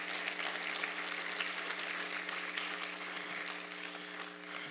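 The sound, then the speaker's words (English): An audience claps in praise to God in a dense, steady burst of applause that holds at an even level for the whole stretch, with a faint sustained low tone beneath and no one speaking. “Let's give God a hand clap of praise for those things.”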